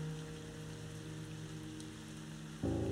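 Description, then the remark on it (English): Steady, continuous rain hisses throughout, mixed with a low sustained tonal hum; near the end the tonal layer swells noticeably louder. “Rain pouring down.”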